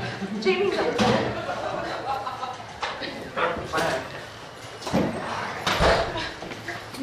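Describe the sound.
A door is pushed shut and locked during a church sermon to lock someone out, with a series of sharp knocks, clunks and latch clicks spread across several seconds while voices murmur in the background.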